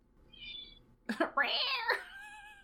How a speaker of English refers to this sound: Shut up, kitty. Shut up.